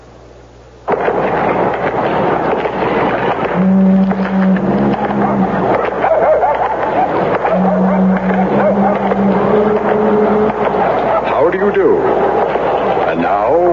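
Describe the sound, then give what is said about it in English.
After a second of near silence, a car engine suddenly roars up loud, running rough and uneven with droning tones that rise and sag, as if sputtering toward a stall. “My car seems to stall all the time.”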